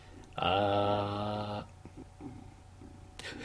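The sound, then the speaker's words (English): A happy male cat purrs with a loud, deep, rumbling, buzzy tone for just over a second, then it drops to faint low noise before a brief rustly burst at the very end. “There's some crazy purring going on right now.”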